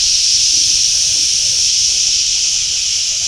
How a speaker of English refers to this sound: you know what comes up at 11:30. That steam release.